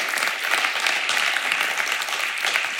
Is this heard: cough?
no